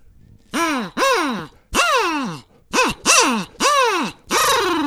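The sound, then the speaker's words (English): An imitated barred owl call: seven loud, buzzy hoots in quick succession, each swooping up and then down in pitch, with short gaps between them and no talking. “Oh, it's a barred owl just flew in here.”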